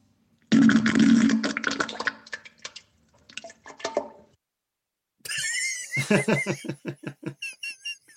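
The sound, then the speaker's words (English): A compilation of one man's farts with short silences between: a long sputtering rumble, a brief burst, then a final run of rapid, rhythmic popping pulses. No one talks. “And he sent in a compilation of his farts.”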